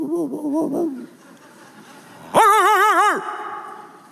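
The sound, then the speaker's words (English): A man's voice imitates dogs barking behind fences in neighborhood yards: a quick run of short wavering yelps, a pause, then a louder, sustained wobbling howl-like bark. “It's almost like they're in every yard behind fences, barking.”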